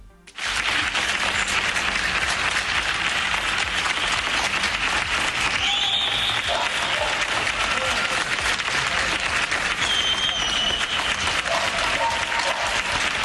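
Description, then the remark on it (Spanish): Sustained, dense applause from many people in Spain clapping from balconies across the country at 10 p.m. in thanks to doctors, nurses, orderlies and emergency services rings out continuously, with scattered faint whistles and cheers rising above it. “Son los aplausos de los españoles en agradecimiento a los médicos, a los enfermeros, a los celadores, a los servicios de urgencia.”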